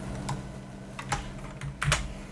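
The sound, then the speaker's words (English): Computer keyboard typing while opening a new tab: a handful of sharp key clicks in an irregular rhythm with a few louder taps near the end, over a low steady hum, with no talking. “You like those typing noises?”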